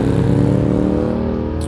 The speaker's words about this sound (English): Sorry, I got some motorcycles on the road here.